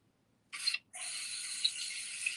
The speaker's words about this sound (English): Oh, I hear the water. Sounds like good, clean fun. Yeah, I thought I'd add a little ambiance since you're signing off. Feel free to return the favor. Well, we appreciate the audio, the ASMR of your shower.